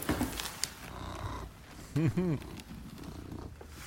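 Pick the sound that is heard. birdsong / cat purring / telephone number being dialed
cat purring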